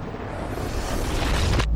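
A reversed explosion sound effect: a loud, rushing roar that swells steadily for nearly two seconds and then cuts off abruptly with a sharp sucking snap. No voices are heard.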